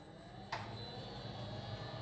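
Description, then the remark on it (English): A heavy protective door outside a hospital room closes with a single muffled thud, sealing in a radioactive patient receiving iodine-131 therapy, followed by a low, steady mechanical hum that continues in the background. Fairly quiet overall, with no voices. “The protective door outside closes.”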